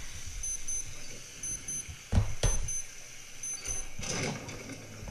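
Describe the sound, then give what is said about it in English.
A timer, set by a man to remind him to take his drink, beeps in repeated bursts of short, high-pitched electronic tones, fairly soft, while a few sharp clattering knocks sound midway through. No one speaks. “He set a timer to take his drink.”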